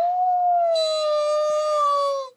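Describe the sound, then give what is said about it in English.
A single long howl from Buck's wild brother, sitting with his nose pointed upward, rises and holds steady for about two seconds, a sustained mournful tone with rich overtones, loud, then cuts off. “It was a mournful howl, and as Buck held steadily on his way, he heard it grow faint and fainter until it was lost in the distance.”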